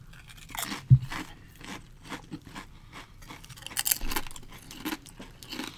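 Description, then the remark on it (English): Loud, irregular crunching of a thick, chili-flavoured chip that smells of Guinness being bitten and chewed, with a sharp snap near the start and a burst of brittle crackling later, no talking. “It's a thicker chip.”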